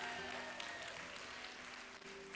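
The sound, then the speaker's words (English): A crowd of women clap steadily for a group of men being honored, a dense, even wash of many hands with no break, subdued rather than roaring, and a faint steady hum underneath. “Y'all are giving them golf clan claps.”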